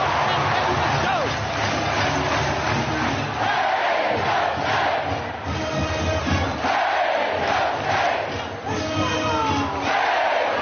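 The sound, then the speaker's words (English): A huge packed crowd, shoulder to shoulder and unmasked, roars and chants in unison, a dense, continuous wall of voices, loud and sustained with rhythmic swells of cheering throughout. “Listen to that crowd.”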